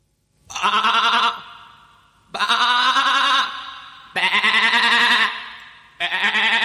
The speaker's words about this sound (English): Listen to this. Who is that? Hey, it's that cutie pie black sheep.